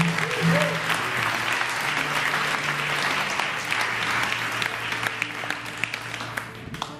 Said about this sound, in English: Amen. Let's just give God one more hand clap of praise today.